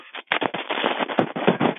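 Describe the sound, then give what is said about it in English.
A bunch of car keys shaken for a couple of seconds, giving a dense, rapid, uneven metallic clatter of overlapping jingles and clicks with no voices. “But I believe you that you're shaking my car keys.”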